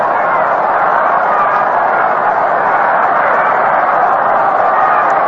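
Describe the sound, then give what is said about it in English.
A baseball crowd at a Dodgers game chants "go, go" for Maury Wills, on base, to run, blending into a dense, steady roar of many voices that holds at an even, fairly loud level throughout, with no single voice standing out. “the crowd begins to chant, go, go.”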